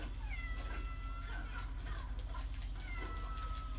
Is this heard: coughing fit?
no